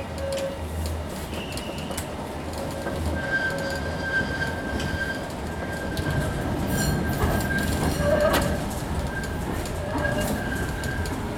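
A tram rolls steadily along its rails, a continuous low rumble with thin metallic squeals and whines drifting in and out, while birds coo faintly in the background.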